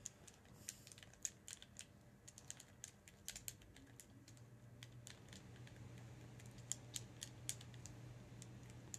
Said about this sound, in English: Yeah, I'm waiting for you to finish typing.